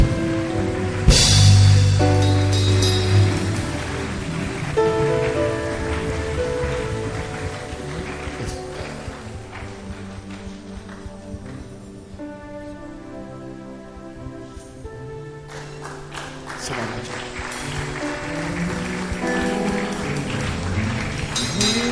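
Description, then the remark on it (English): An audience claps hands steadily to give praise and glory over loud, sustained music, the dense patter of many hands blending with held chords and bass for the full stretch, with no speech. “If you are clapping your hands, clap it and give him praise and glory.”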